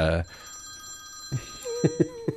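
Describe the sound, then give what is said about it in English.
A phone rings with a steady electronic tone held through the whole moment, fairly faint and in the background, while a voice speaks briefly at the start and short vocal bursts break in near the end. “it is a phone ringing.”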